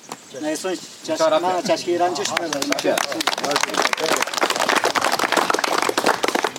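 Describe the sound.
Several voices talk over each other at a road construction site where workers are digging a trench in the middle of the road, then a group breaks into loud, steady clapping: a dense patter of sharp hand claps that keeps going to the end, mixed with ongoing chatter.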